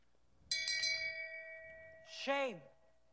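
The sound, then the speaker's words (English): A bright bell is struck a few quick times and rings on with a long, steady tone. A voice calls out the single drawn-out word "shame" over the fading ring. “If naked women want to walk by me and ring a bell and say shame, shame, shame, I'm here all day for you.”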